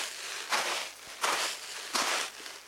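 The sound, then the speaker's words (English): Three slow, heavy footsteps crunch through the sand of a sand pit, each a broad gritty burst with a soft scraping tail, used to make the sound of walking on snow, with a faint steady hum beneath. “Other times, they'll just use the sand in their sand pit.”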